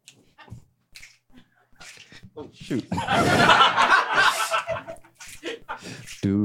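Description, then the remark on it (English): A few sharp, scattered finger snaps ring out near the start as someone begins an a cappella theme song, then give way to a burst of chuckling and laughter with voices over it. “So you started snapping, you tripped over your own bag.”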